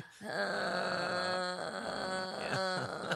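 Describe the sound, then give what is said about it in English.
A voice imitates a woman slowly groaning while sucking someone's ear: a slow, drawn-out, sustained tonal moan that wavers in pitch and breaks off briefly a couple of times, fairly loud and continuous for about three seconds with no other talk. “She's sucking my ear, and then at the same time, she's slowly groaning.”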